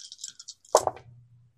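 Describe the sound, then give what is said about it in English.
Several small dice, including a hunger die, are rolled. They clatter in a short rattle, a series of quick light clicks followed by a sharper tumble as they land and settle, with a low hum trailing afterward. “I'm rolling then at one hunger dice.”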